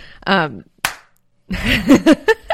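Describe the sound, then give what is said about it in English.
A single sharp hand slap, a high five, cracks out briefly, set between bursts of voices talking and reacting. “We have officially done an episode every single week of 2023, which is high fives.”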